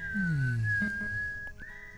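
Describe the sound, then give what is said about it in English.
A soft, steady whistle holds a single high tone for about two seconds, gliding slightly upward near the end, with a low hum and faint background noise beneath it. “So that gentle whistle.”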